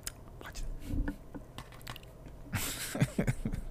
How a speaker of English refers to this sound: Sip away from the mic. Yes, please. Making those weirdo noises that, again.